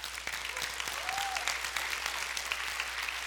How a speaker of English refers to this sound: Yes, you can applaud that.